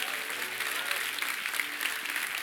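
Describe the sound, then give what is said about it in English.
An audience bursts into sustained, dense clapping and shouting for the Lord that holds steady throughout, a bright wash of applause with a few voices calling out faintly underneath. “Why don't I give the Lord a clap and a shout?”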